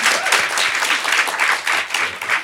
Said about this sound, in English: Can we please have a big round of applause for Belle?